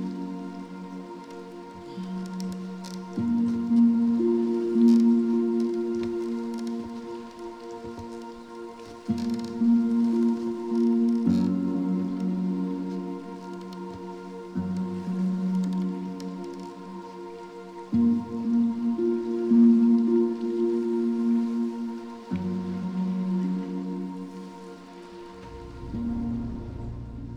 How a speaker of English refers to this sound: And then it makes you wonder, how could Jesus be sleeping in a boat when it's raining and it's thunder and it's lightning? Storm, in a storm, and he's sleeping.